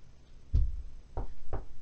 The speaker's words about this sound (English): My mom just knocked on my door. And oh, that happens, like, I think now. Every episode. Like, yep. I get a knock on my door.